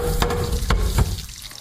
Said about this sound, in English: Mom's giving her daughter a lesson on how to cook eggs over easy. She's on a call, so she motions it's time to flip them.